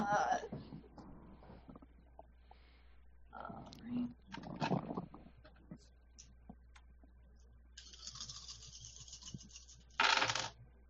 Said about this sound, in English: Okay, it would help if I didn't drop my dice all over the goddamn floor.